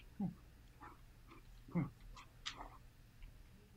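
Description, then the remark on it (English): A large 180-pound dog named Bodhi snorts and snuffles into the microphone in a few short, breathy bursts with low grunting tones, over a faint steady background hum. “Yeah, that's my 180 pound dog.”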